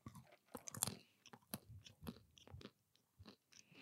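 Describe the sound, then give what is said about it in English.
Loud crunching of a crispy snack being chewed, with repeated sharp bursts in an uneven rhythm and no talking. “Popcorn definitely makes better sounds.”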